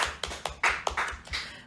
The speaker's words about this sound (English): clapping really loudly.